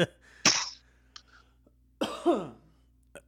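Two harsh coughs with a pause between them. The second is longer and rougher, trailing into a throaty rasp, with faint breathy sounds around them.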